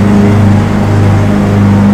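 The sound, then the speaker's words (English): A lawnmower engine drones steadily with a low, buzzing hum and a slightly rough, even idle, holding constant loudness throughout with no voices present. “There's a lawnmower, so this is a wrap.”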